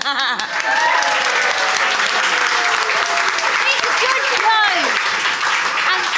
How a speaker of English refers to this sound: There you go. Round of applause.